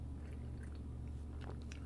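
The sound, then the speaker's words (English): Someone takes a drink of water: a few soft, wet sipping and swallowing sounds, faint and irregular, over a steady low hum with no talking. “Sorry, I'm taking a drink.”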